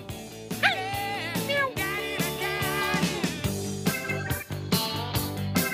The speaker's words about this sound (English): Like Ramsey Bolton's dogs. Arr, arr, arr.